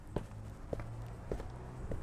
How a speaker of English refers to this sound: Just as I pass the Chase Bank, I start to hear footsteps fall into place with mine.